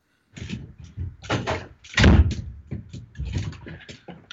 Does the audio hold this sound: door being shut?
yes